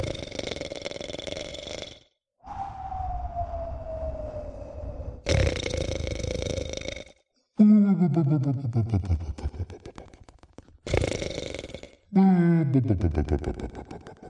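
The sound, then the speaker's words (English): A person mimics snoring with their voice: rough, rattling inhales alternate with long groaning or whistling exhales, repeating about three times, loud, with no talking. “Is there any chance you have a snoring sound effect button? Or do you want me to just go...”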